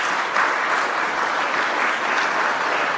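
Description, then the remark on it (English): Lukewarm, slow, half-hearted audience applause after an anti-abortion speech, a steady wash of many hands clapping at moderate volume for three seconds, with no voices over it. “That little slow clap.”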